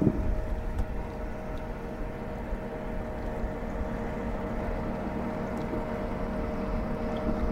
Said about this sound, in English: And he's zooming in into the river, and there is a canoe or some kind of boat paddling along. And that must be where that whistling is coming from.